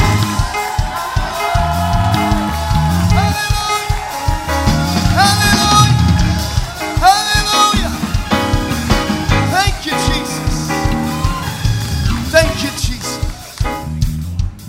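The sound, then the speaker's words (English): An audience claps and gives the Lord a shout of praise over loud, steady music for about fifteen seconds, with rising and falling voices and dense rhythmic hits filling the sound throughout. “Can we clap our hands one more time and give the Lord a shout of praise?”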